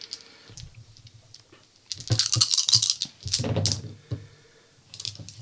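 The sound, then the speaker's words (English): A handful of five dice rattle and clatter in two quick bursts, a shake then a tumble, fairly loud, with quieter scattered clicks before and after and no voices; the dice are rolled for an aiming roll in a game. “So I'm just basically using my aiming, which is five dice.”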